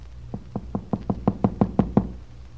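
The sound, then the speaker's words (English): A rapid series of about ten sharp knocks on a wooden house door, evenly spaced and growing slightly louder, with no voices. “Now Jesse is waiting at Brett's door for an answer to her knock.”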